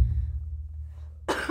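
A single sharp cough bursts out near the end, fairly loud, after a stretch of quiet with only a low background hum.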